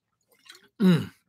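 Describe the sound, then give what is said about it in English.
A quick, quiet sip of ice water followed by a louder, wet swallow with a brief breathy, voiced release, all over in about a second with no talking. “That's ice water. That's not Everclear, I promise.”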